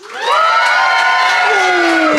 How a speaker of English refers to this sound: Applaud now.